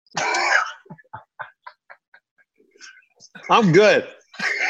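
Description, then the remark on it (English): A few harsh coughing fits, one near the start and another near the end, separated by quieter breathy clicks and short throaty sounds. “Yeah, they're coughing out there.”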